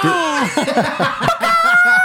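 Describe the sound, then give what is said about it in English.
A man's voice imitates a chicken, making a quick run of choppy, clucking bursts, with a shrill, wavering tone running steadily underneath. “that was a chicken.”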